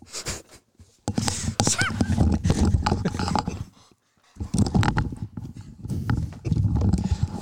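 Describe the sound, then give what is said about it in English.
A dog makes noise: a busy stretch of loud yelps and rustling, a brief pause, then another long burst of the same agitated sounds. “I got a Riley dog here. Yeah, I mean, he was giving me the business.”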